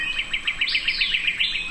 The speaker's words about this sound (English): Lang Elliott and Ted Mack recorded this dawn chorus of birds, insects, and amphibians at Florida's Big Cypress Preserve.